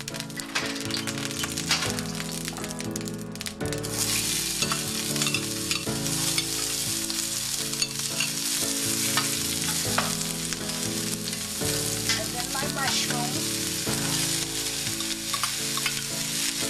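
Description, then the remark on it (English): Onions sizzle steadily in vegetable oil in a heated frying pan while a utensil stirs and scrapes them, being sauteed as the first step of a recipe, a continuous crackling hiss with no one speaking. “And the first thing we're going to do is saute the onions and the mushrooms.”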